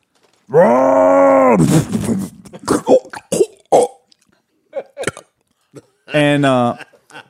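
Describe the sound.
A voice imitates a boat's big 1200 cc motor with a long, low, strained drone, then sputters through a series of choppy bursts and ends with a second rising, revving hum.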